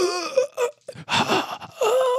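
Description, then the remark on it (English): A voice imitates a character with a broken rib cage and collapsed lungs gasping for breath: a few strained, wheezy inhalations and groaning exhales in quick succession, fairly loud, with brief pauses between. “So Magulio is gasping for breath.”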